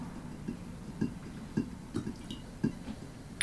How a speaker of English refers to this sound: Okay. And then pour it in. Pour it in. I don't want to spill.